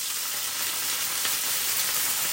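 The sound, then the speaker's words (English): A steady sizzle of lemon juice squeezed into a hot frying pan, a continuous bright hiss with faint crackles throughout, no voices. “And you can hear that just sizzling away in the pan.”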